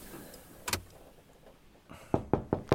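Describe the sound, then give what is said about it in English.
A lone thud, then after a pause four quick, evenly spaced knocks on a truck cab door, sharp against a quiet cabin hum. No one speaks. “someone on your side of the cab there? Yeah. I guess so. Let me just open the door.”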